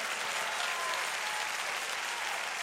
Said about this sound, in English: Would you clap your hands and give praise to God?